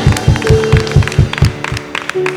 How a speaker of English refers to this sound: I want us to clap. Clap for Jesus. Clap for Jesus. Clap for Jesus. Clap for Jesus.